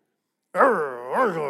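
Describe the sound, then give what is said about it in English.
A single drawn-out, growl-like vocal sound, fairly loud, rising and falling twice in pitch over about a second. It seems to be a human voice imitating a dog growling during a game of tug of war. “It actually comes from a Hebrew root word that means to growl. That doesn't make any sense except when I play tug of war with my dog.”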